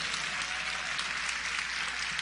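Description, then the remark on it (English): A crowd applauds steadily for a minister awarded a Duke Fellowship, a dense, even wash of clapping that holds at a constant moderate level throughout, with no voices standing out. “Now, y'all really going to clap, because a Duke Fellowship basically means he ain't got to pay for nothing next year.”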